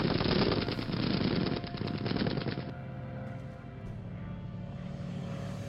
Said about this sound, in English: The final Messerschmitt attack came at 3:01 p.m, the German fighter planes, guns blazing, and the remaining Wellingtons returning fire, though no aircraft on either side were damaged in this last exchange.